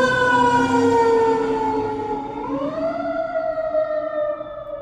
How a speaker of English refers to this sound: And here comes a fire truck. Hope it's not my apartment.